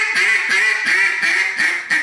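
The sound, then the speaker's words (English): A steady run of about six loud, slowed-down hen mallard quacks blown on a duck call, evenly paced and nasal, with no talking over them. “That's my boss hen right here.”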